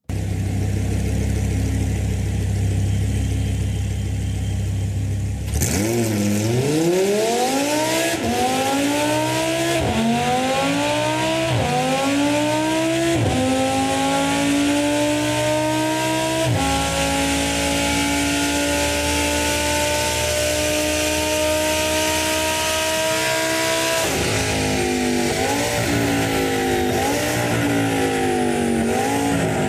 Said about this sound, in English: It's the car. It's a white Audi R8 on the dyno with open headers.